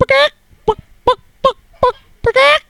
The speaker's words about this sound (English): The cock is here.